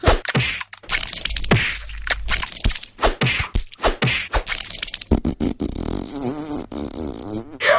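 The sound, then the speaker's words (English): Repeated wet, heavy smacks and thwacks as a turducken is pounded and crushed, a rapid series of loud squelching impacts, followed by scraping, crunching and a few higher squeaky sounds. “You smashed the turducken, you close the gateway!”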